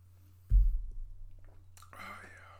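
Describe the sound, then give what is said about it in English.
A dull low bump, followed about a second later by a short, airy slurping sip as someone takes the last sip of a drink. There is no talking, and a steady low hum sits underneath. “Let me take the last sip of this here.”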